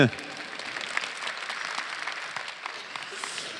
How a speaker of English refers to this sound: It's hard to believe that time has come. You can clap for that. That's fine.